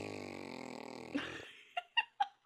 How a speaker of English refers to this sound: That was a good one. Nice trumping.